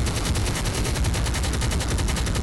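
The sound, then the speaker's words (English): A rapid, sustained burst of automatic gunfire from a sound effect, evenly spaced shots rattling at a fast rhythm for a couple of seconds, loud and continuous with no talking. “Let that chopper ring.”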